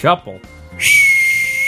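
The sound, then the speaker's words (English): A tea kettle bursts into a loud, steady, high-pitched whistle laced with hissing steam, holding one shrill tone after a brief moment of voice-like sound at the start. “Your tea's done.”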